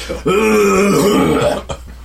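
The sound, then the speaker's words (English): A single loud, drawn-out, gravelly cough, rasping and throaty for over a second before cutting off, followed by a short catch of breath. “who gives them a horrid cough to seal the deal.”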